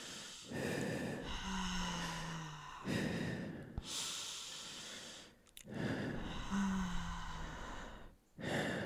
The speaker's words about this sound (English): She closed her eyes and began doing the breathing ritual her mother had taught her.